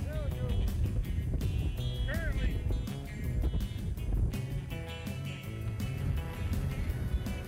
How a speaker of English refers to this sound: We're in the eye of Ada here in Largo. Among my friends. Tremendous weather. Wind. Coming in.